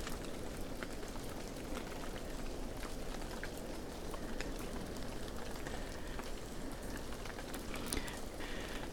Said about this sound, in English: It's a manky start to the day. It's been raining all morning, but the weather forecast for the day doesn't look too bad.